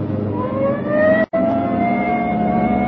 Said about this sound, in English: Hit the siren. I'll get the light.